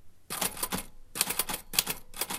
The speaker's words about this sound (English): the sound that reminds me of my father is the sound of an old typewriter. He was a professor and a poet, and he would spend hours clacking away on that old machine with his two index fingers, translating some obscure Latin